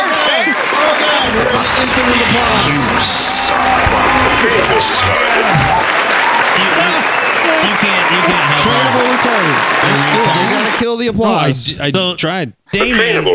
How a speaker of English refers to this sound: Not the applause.